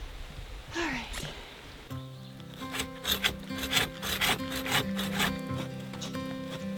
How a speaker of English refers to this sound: We needed to build some kind of tarp roof to our outdoor kitchen area so that we could cook in the rain. So I headed into the woods with a handsaw and I looked for some small pine trees I could cut down.